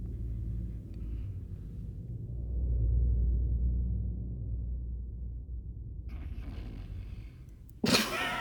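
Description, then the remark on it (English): A loud, deep rumbling snore from an uncle, a low droning rattle that swells through the middle, then turns rougher before a sudden sharp burst of noise at the very end. “I guess snoring runs in the family.”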